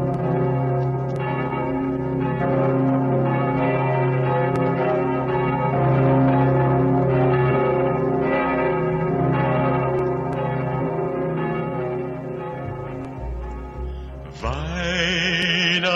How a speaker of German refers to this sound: Symbol ehrfurchtsvoller Andacht ist das gewaltige Geläute des Wiener Stephansdomes. Tief dröhnt die größte Glocke, die Pummerin.